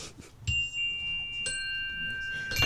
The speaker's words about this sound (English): You want to ring the bell? Yeah.